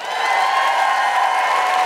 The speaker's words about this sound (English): Big round of applause for Rachel Paris.